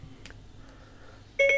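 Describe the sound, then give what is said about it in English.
Siri's activation beep on an iPhone, triggered by holding down the home button: a bright, steady electronic tone sounds loud near the end, after a quiet stretch broken only by a faint click. No one speaks. “And, of course, I'm going to hold down the home button, wait for the beep, and just say open Blind Square.”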